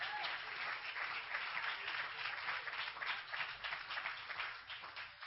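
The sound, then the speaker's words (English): A crowd claps steadily at a church service for about five seconds, a dense, even patter of many hands with no voices rising above it. “Clap your hands because you're in God's house today and everything's going to be all right.”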